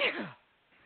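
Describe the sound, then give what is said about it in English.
A single sharp sneeze bursts out, loud at first and trailing off within a fraction of a second, followed by near silence. “Sorry. Bless you.”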